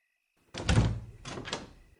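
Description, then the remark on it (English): An unlocked door is opened with a heavy wooden thunk and creaking scrape, followed by a second shorter rattle as it swings, fairly loud with no voices. “Ah, let's try the door. Well, it's not locked, so that's a relief.”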